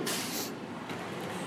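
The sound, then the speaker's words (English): A large truck rumbles past outside, with a sharp hiss of air brakes at the start and a steady low engine drone and road noise throughout, fairly loud with no talking. “Sorry, large truck going by here.”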